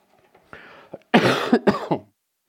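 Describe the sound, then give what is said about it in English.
A quick throat clear followed by a burst of three or four harsh coughs in rapid succession, loud and unaccompanied by any speech. “I was hoping to get through this without a cough drop”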